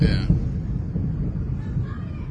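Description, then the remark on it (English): A distant explosion rolls in as a deep, loud rumble, a low booming roar that sustains steadily for a couple of seconds without a sharp crack. “From the time we see the explosion to the time we hear it.”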